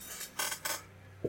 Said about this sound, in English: You're rolling your own dice right now.